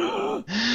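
A big, deep gasp, a strained breath that dips and breaks off briefly before a second, lower drawn-out sound, heard alone without speech.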